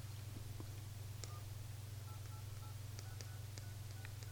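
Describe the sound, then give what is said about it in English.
A quick series of telephone keypad tones, each short beep distinct, dialed in an uneven rhythm over a steady low electrical hum, fairly quiet, as someone dials an 800 line to test whether it is working. “See, just in time, I see our 800 line is working. Let's see if somebody calls. Let me try it.”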